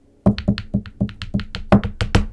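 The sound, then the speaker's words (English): A quick drum roll tapped out by hands, about a dozen sharp slaps alternating between dull low thumps and brighter higher smacks, quickening slightly toward the end, with no talking. “Number one, drum roll please.”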